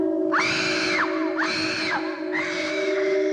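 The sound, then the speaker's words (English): A woman, the character Zoe in a played TV clip from the story Mind Robber, lets out three loud, high-pitched screams in quick succession, each held for under a second, with a faint steady hum running underneath. “This has kind of been a revelation to me because all these years, the only way I knew Zoe was from Mind Robber, and she's kind of a little bit annoying in that story, and she also screams.”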